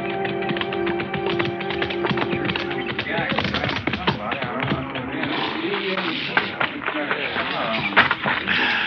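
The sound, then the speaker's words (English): Horse hooves clip-clop in a steady, uneven stream of sharp knocks, with a busy background murmur and faint voices blending in throughout. “Just drop your saddle anyways, Marshal. I'll turn your horse in with a remuda.”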